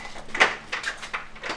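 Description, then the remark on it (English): A back door of the Power Lab building, under construction, at the Danish Technical University on the outskirts of Copenhagen being opened: a sharp clunk of the latch, then a few softer scrapes and creaks as it swings, with no talking. “We're going in through the back door here because the main door is the construction side at the moment.”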